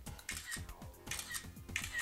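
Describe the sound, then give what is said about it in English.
Phone camera shutter clicks repeat in quick succession, several crisp snaps a fraction of a second apart, as a series of photos is taken in a studio to be stitched together into a photo sphere, with no one talking. “So you take a series of photos and you click away and it will build up a photo image based on what you're clicking.”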